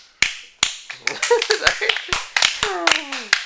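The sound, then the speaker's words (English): Sharp, crisp, slow sarcastic hand claps ring out, two spaced ones and then a steady run of about a dozen more at an unhurried pace while a voice talks over them. “I wish I could do the Joker clap.”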